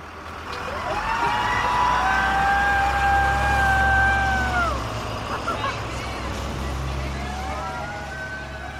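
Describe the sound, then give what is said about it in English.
A bus pulls away with a deep engine rumble and a rising whine that holds steady, drops off, then climbs again as it shifts and accelerates, fairly loud, carrying costume partygoers off to their first stop. “They found seats near the rear of the bus, and then just like that, they were headed off to their first stop.”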